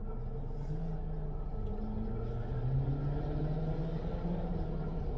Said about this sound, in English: I lost my train of thought. As the train is fucking just over me and shit.